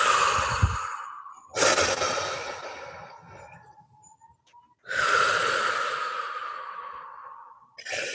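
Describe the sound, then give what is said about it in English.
Slow, deep breaths, each a long broad whoosh of air fading out, with quiet gaps between them. Three breaths, no talking. “And just welcome in a few deep breaths.”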